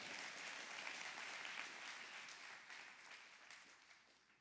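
An audience claps their hands together in a dense, steady wash of applause with no distinct beat. It holds fairly loud throughout and tapers off slightly toward the end, with no voices.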